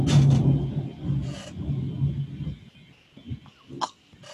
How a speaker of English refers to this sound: Dude, there was some big-time thunder going on there. Did you just hear that? Holy moly. Jeez, that rattled my house.